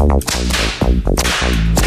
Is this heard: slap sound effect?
yes